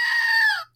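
A battery-powered Screaming Goat toy with new batteries lets out one shrill, nasal scream, loud, holding steady for just over half a second before cutting off abruptly. No one speaks.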